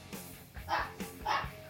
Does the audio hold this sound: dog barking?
yes